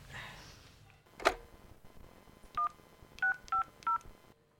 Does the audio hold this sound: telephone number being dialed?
yes